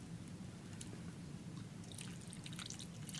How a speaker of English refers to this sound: So if you're in the store, though, grabbing this stuff anyway, you can usually find a lot of different choices of sweet and sour. So we're going to add that margarita mix to them just a little bit.